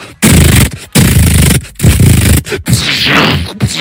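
Loud gunfire sound effect: several sustained, dense bursts of rattling shots, each a second or so long, separated by brief pauses. No one speaks.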